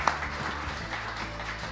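A steady round of applause from an audience for a guest at the end of a sit-down talk, dense overlapping claps forming an even wash of noise that holds at moderate level throughout, with no voices on top.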